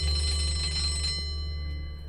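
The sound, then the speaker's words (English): A school bell signalling the next change of class rings loudly in a steady, continuous electric clatter for about a second, then cuts off, leaving a fading metallic hum and ringing overtones. No voices are heard. “the ruined cheek, and got up to leave as the bell signaled the next change of class.”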